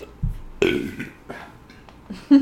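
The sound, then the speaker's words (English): A loud burp erupts right into the microphone, rumbling and drawn out for a moment before trailing off, followed by a few softer throaty sounds. “He said, burping directly into the microphone.”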